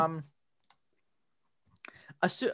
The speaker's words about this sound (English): I'm clicking the link.